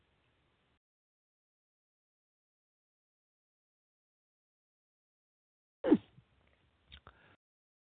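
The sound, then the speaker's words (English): After a long stretch of near silence, a single short slurping sip of wine from a glass sounds fairly soft, followed by a couple of faint little clicks. “And one more little sip, because we've been talking nearly 18 minutes and we haven't moved off the wine itself.”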